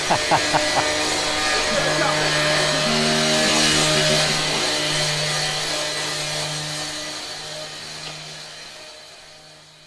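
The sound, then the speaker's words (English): A grinder runs steadily with a harsh, hissing whine over a low droning hum, holding loud for several seconds before slowly fading away. A few sharp knocks sound at the start. “Right, so we think we've escaped the grinder.”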